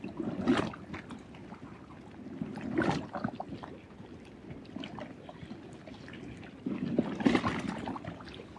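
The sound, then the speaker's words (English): Water sloshes and laps steadily, swelling into three louder wave surges, with scattered sharp crackles and clicks of shifting ice. No voices. “bathing ourselves in the sounds of ice and water, waves.”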